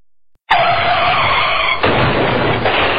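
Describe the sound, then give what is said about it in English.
A loud, sudden tire skid sound effect, part of a car crash effect, screeches in with a harsh squeal and keeps going without a break, with a slight shift partway through, like a car sliding hard. No one speaks. “Nobody wants to be in a car accident, but it can happen to even the most careful drivers.”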